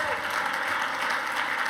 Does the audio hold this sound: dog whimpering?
no